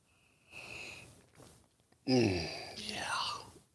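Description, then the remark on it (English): Someone takes a 'simultaneous sip' of a drink: a soft, breathy slurp, followed by a loud, satisfied vocal exhale like an "ahh" that trails off into a wavering, groan-like sigh. “See how you feel without the simultaneous sip.”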